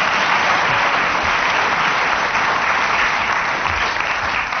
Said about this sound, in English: Would ask the audience to be a bit quicker with the applause, because it's the only way we know that a game's finished.